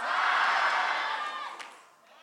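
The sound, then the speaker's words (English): A large church audience shouts "fight!" together in one loud, sustained roar of many voices that swells briefly, then gradually fades away over about two seconds. “Let us fight for the marriages of divine by shouting, fight!”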